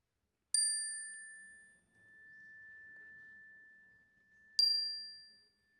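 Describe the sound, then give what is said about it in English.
A chime is struck twice, about four seconds apart, each strike ringing out with a bright metallic attack and a long, sustained fading tone amid quiet, as a signal during a morning prayer gathering. “At the sound of the chime, I invite you to share those aloud.”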